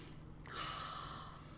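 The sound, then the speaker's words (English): A single long, breathy sniff drawn in through the nose, smelling loose-leaf Hope and Glory Rajah Collection Organic Masala Chai tea, starting abruptly and holding steady for about a second against a quiet background with faint hum. “Can I have a sniff? Have a smell.”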